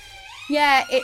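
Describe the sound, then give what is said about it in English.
An ambulance siren wails from a street in London, its rising tone moving past at moderate volume while a person talks over it briefly. “Hiya, ambulance.”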